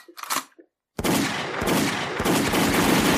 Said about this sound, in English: All right, enough. The goddamn gunshots. You know I had to. Too much.